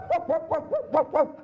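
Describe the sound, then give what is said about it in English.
A voice imitates a poodle yapping, six quick, evenly spaced barks in a rapid burst, fairly loud, with no talking around them. “I actually had a big barking dog roll.”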